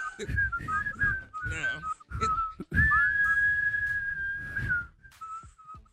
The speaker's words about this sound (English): Hum okay. Whistle it.